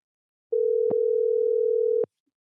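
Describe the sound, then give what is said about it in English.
A single steady electronic ringing tone from an outgoing phone call lasts about a second and a half, clear, bracketed by faint clicks, then cuts to silence. No one speaks. “Let's see if he answers, shall we?”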